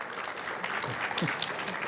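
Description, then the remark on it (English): A steady wash of audience applause, many hands clapping in a dense, crackling texture that holds at an even level for about two seconds, with a faint voice murmuring underneath. “You might not be that great, and they clap for you anyway.”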